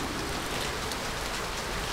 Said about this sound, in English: Look at that rain come down! We'll never get home on time.